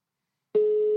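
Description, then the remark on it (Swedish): A steady electronic telephone tone starts abruptly halfway through after silence, a clean sustained pitch with faint harmonics, loud, continuing to the end. “Undrar vad han har för telefon.”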